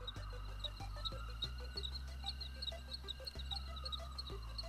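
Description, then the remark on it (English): A crickets sound effect used to mark a comedic silence: crickets chirp in a steady, repeating pattern against a quiet nighttime backdrop, with low frog-like croaks pulsing underneath and no one talking. “I hope I'm a pretty good editor, because I'm trying to get crickets on that part.”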